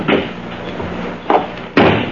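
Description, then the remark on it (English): A car door slams shut with a solid thud, followed by a couple more dull knocks and clunks over a faint background rumble. “Then stand aside while I release the brake and close the door.”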